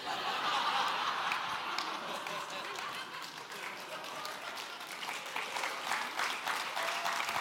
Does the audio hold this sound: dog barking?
no